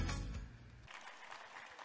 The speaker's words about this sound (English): Yeah, I was glad y'all clapped when I walked up here because I watched the service last week and y'all clapped when Brother Bill spoke.